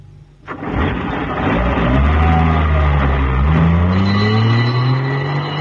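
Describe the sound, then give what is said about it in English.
A sharp thump, then an ambulance engine roars, its pitch climbing steadily as it revs and accelerates, staying loud throughout with no voices. “Oh, thank heavens, here's the ambulance.”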